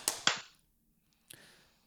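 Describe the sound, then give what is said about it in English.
Hand claps to sync the audio of a recording after a break: two sharp claps in quick succession, each with a short ringing decay, followed after a pause by a third softer clap with a longer tail. No one speaks. “All right, so we'll clap 3, 2, 1, clap.”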